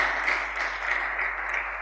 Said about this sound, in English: Can we clap for our children? Wonderful, wonderful. Now, that's a half-hearted one. Come on now.